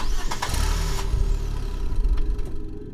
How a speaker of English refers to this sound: The man cranked over the engine and it burst into life.